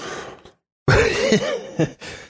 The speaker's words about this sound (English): You can't just like bend over and hack your lung out. Like they'll see it.